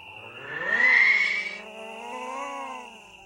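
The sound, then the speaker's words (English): An eerie, drawn-out dinosaur cry from a film scene where the dinosaur roars into the sunset, built from a modified falcon screech overlaid with something else: a layered, harmonic wail with a shrill streak that peaks early, then dips into a softer, wavering second swell. “It's like a modified falcon screech.”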